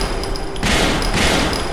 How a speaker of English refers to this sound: Batman pushes Red Robin out of the way and draws out his gun and fires.